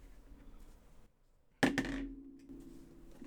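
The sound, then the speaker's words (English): Dice clatter onto a hard table: two quick, sharp hits, followed by a short ringing rattle as they settle, with quiet background noise before and after. “This dice is fucking weighted.”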